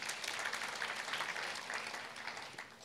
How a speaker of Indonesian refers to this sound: Boleh berikan tepuk tangan buat Tuhan.